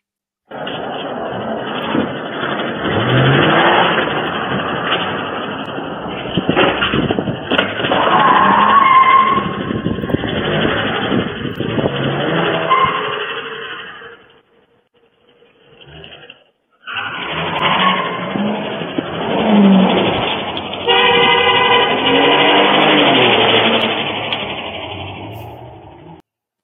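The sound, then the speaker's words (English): A car roars and revs hard with screeching, skidding tires during a police chase, engine pitch rising and falling over a loud, continuous rush, briefly dropping away before another burst of racing engine noise. “He's walking back down the alley, smoking a cigarette, while the cops are like racing past him after he just jumped out of the vehicle that he was leading them along with.”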